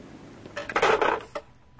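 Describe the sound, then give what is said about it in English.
A butler rings the doorbell of a house on Astor Drive in Bay City: a bright metallic tone, a quick cluster of clanging strikes lasting under a second, then one softer ping before it fades into quiet. “That's me you hear. Ringing the doorbell.”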